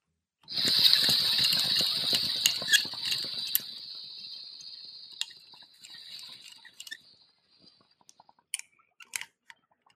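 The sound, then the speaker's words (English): Loud bubbling gurgle of a water pipe being drawn through during a dab hit for about three seconds over a steady sizzling hiss from the torch-heated piece, which thins out and fades, followed by a few faint clicks. “And then you just put it in the heat and watch it sizzle and inhale.”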